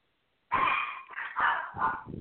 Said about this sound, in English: Puppies are barking. My puppies.